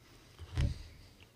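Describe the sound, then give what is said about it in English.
A single sharp crunch of a lozenge being bitten stands out briefly against a quiet background with no talking. “As I crunch on my lozenge.”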